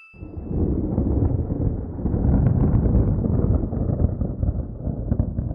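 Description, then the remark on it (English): A brief bell tone, then a group of children stomping their feet together in a dense, continuous low rumble that imitates rolling thunder, loud for several seconds. “Children, let's stomp our feet to make the thunder sound after the bell.”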